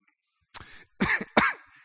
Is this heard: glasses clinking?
no